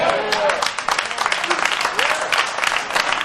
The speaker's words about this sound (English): Oh, the hand claps thinning out. They thinning out because you're messing with folks' music.